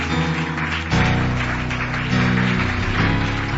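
A church audience claps steadily in praise to Jesus, a dense, continuous wash of hand claps over sustained low musical tones, growing a little louder after the first second.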